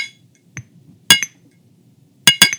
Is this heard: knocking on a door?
no